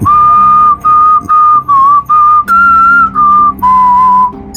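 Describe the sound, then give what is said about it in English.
A person whistles a short, steady tune, clear and fairly loud, in a series of held notes broken by brief pauses, with a faint low hum underneath. “Good thing I beat the designer at Mahjong and convinced them to install a deactivation switch in a locked, hidden compartment only activated by the sound of me whistling.”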